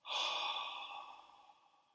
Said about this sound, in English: I want you to, again, just invite you to maybe just take a deep breath in. Hold and let the breath out.